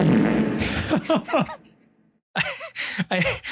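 A loud, sputtering fart sound effect from a sound pad, called Fart with the Reverb, with a reverberant tail that rings out and fades, followed after a brief silence by a second burst of similar bubbling, buzzy noise.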